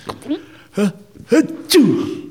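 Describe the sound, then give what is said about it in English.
A voice imitates sneezing: three or four exaggerated, voiced "ah-choo" bursts in quick succession, each a rising-falling vocal sound ending in a sharp, breathy burst. The last one is the loudest. “Gesundheit.”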